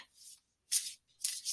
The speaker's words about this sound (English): Let me go ahead and start shuffling from that abundance card.